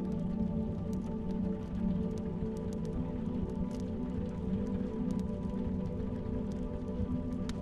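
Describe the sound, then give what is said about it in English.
Soft rain patters steadily against a window, with scattered light drops tapping irregularly over a low, constant background hum. No voices, just the gentle, continuous shower. “The soft, gentle taps on the window ease your mind more.”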